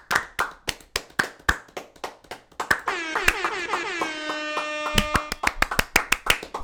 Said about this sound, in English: Two platinums, God of War Ragnarok. Let's give them a platinum Horizon. Clap. Let's give them a long platinum clap. Platinum, yep. Woo!